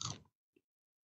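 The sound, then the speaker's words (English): A single loud, crisp crunch of teeth biting into a crispy coated chicken drumstick, followed by a brief soft chewing sound and then quiet. “That one really crunched.”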